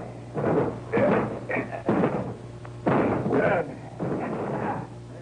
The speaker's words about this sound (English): All right, Sergeant, we'll break the door down. Very good, sir.